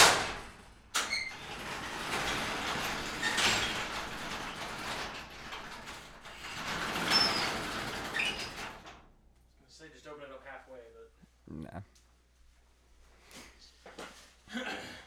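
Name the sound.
garage door being opened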